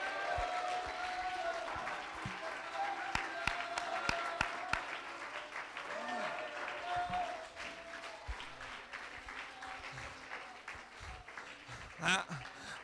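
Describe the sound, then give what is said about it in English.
An audience claps steadily and shouts unto God for nearly thirteen seconds, a dense, loud wash of applause with raised voices calling out over it, swelling near the start and tapering slightly toward the end. “If you believe that, why don't you clap your hands and shout unto God?”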